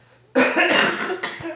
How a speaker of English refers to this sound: Ew. We're, like, coughing. Why but, do you cough at the same time? No, because we're, like, stressing out over the situation.